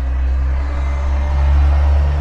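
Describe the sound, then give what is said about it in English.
A truck's heavy engine rumbles loudly, a deep steady drone with a slight swell as it goes past. No voices are heard. “This passing interruption truck.”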